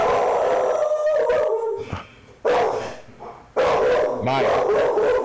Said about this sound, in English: That's my dogs. They just barking.